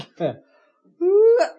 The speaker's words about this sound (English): You see? I'm sneezing.